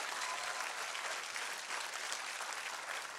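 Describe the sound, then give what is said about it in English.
A large audience claps in a dense, steady wash of applause, loud and continuous throughout, with no talking over it. “Come on, somebody clap like God is able.”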